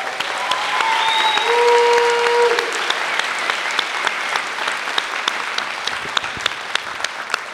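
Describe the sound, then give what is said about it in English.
Sustained applause from a theater audience in Tampa, dense and steady clapping with sharp individual claps popping out, plus a few brief whistles early on. “Can we give them a round of applause, too?”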